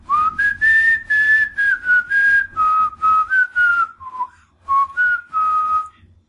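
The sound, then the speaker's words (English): A clear, fairly loud whistled melody outside a window, a string of sustained pitched notes rising and falling in a steady tune for several seconds, with a faint low rumble underneath and no talking. “You want them damn whistling bears.”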